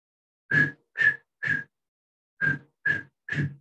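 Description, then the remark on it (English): A voice imitates a sports prefect's early-morning wake-up whistle with six short, breathy toots in two quick groups of three, separated by a brief pause. Each blast is loud, with a rough, hoarse edge. “You know, the whistle. My whistle is not good as it was used to be.”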